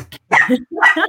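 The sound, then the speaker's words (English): A puppy whimpers and yips in two quick, fairly loud bursts of high, whiny cries separated by a brief pause, with no talking over them. “the puppy wants to get involved.”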